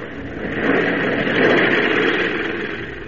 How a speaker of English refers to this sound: On across the unlimited wilderness of northern Canada, the plane wings its way, carrying not only Perry White and his party, but also the man who has vowed to destroy them.